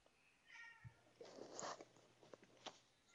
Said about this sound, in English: I mean, punctuated by the cat meowing in the background.